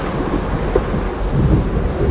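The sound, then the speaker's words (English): A deep, rolling rumble of thunder with lightning blends with a dense, steady wash of heavy rain, loud and continuous with no voices. “Whoa, that's lightning.”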